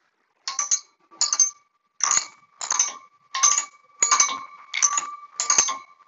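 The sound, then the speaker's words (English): Water-filled glass bottles, with water poured to different heights, tapped like a xylophone: eight bright, bell-like clinks at a steady pace, each ringing briefly with a clear high tone before the next strike. No one speaks. “I did the thing where you pour the water at different heights in”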